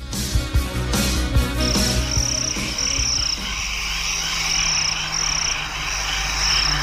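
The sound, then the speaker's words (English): Crickets buzzing in a high, steady trill that pulses in repeated bursts, set against a low, continuous rumble and some scattered clicks in the background. “All those crickets buzzing in the background.”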